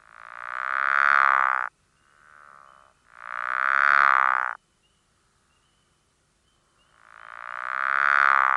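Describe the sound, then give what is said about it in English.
A pickerel frog gives three low, snoring calls, each lasting about one to two seconds, with a brief softer grunt after the first and a longer silent gap before the last. “This call has been described as a low-pitched snore, sounding like yow, which lasts 1 to 2 seconds.”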